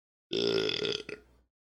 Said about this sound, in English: Why did G Fuel get me to burp?